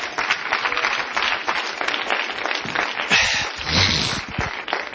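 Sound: audience clapping hands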